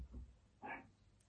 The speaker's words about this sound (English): Anyway, my dog's barking now, so I'm going to go.